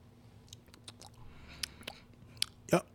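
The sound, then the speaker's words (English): Someone sips a mezcal drink, with soft wet mouth clicks and lip smacks, then a louder slurp and swallow near the end. The background is otherwise quiet. “All right, so we're gonna go ahead and take a sip of this, a swig.”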